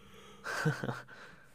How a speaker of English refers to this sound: I don't know why I keep yawning so much, dude. What the heck? I don't know what just got into me. I'm just like sitting here yawning up a storm now.